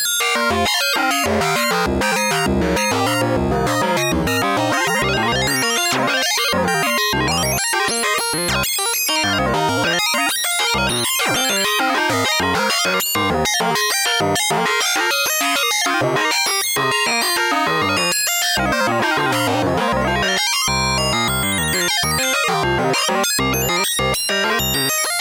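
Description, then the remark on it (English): A slow modular synthesizer patch, using the minimum output from a Rampage module instead of the sine wave from a Pico R&D, plays without interruption, a dense, buzzy wash of harmonic-rich tones with slowly sweeping, shifting pitches and busy pulsing textures, steady and loud throughout, with no voices. “Now I'm just taking the minimum output from the Rampage and using that instead of the sine wave from the Pico R&D.”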